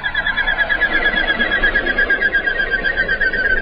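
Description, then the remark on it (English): The wings of a common goldeneye duck (Bucephala clangula) whistle in flight, a steady, rapidly pulsing high-pitched whine that carries on unbroken for several seconds, clear, with no voices. “Bucephala, Clangula, the common golden eye, is today's Talkin' Birds featured feathered friend.”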